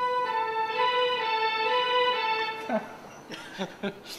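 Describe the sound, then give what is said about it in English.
A police car siren effect played on an electronic organ, a loud, sustained buzzy tone that holds for a few seconds before cutting off, followed by a few brief knocks and rustles. “Well, police car.”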